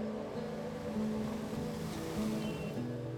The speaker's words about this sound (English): This is near the ocean. You begin walking on the sand that gently touches your feet, grainy yet soft. As the waves hit the shore, water runs over your feet, sending in a chill and bringing in a sense of freshness.